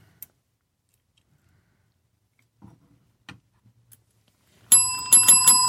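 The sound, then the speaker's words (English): A bright metallic bell rings out in a quick, loud burst of repeated strikes near the end, after a few faint clicks and taps in otherwise quiet surroundings. “That's my bell.”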